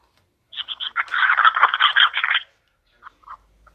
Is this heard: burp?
no